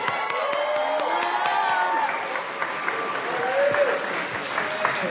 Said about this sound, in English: Now I think we'll get a cheer. Are you guys ready to find out who the 2017 varsity first place winner is?